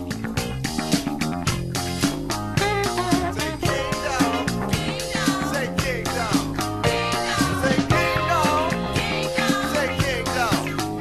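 A smooth 1981 song plays continuously, with a full band, steady bass and rhythm, and gliding melodic lead lines over the top, holding an even, moderately loud level throughout.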